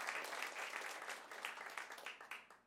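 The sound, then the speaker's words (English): An audience breaks into steady applause for the speaker's husband, a dense crackle of many hands clapping together at a fairly loud level before gradually tapering off toward the end. “You can clap for him.”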